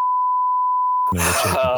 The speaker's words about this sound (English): I'll bleep that out.